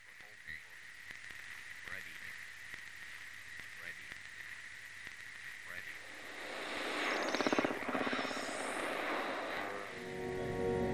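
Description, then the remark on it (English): A search party's radio hisses and crackles with static, a steady whine running under scattered clicks, then a sweeping surge of interference swells before ending in warbling, distorted noise. “David's radio crackled to life with interference.”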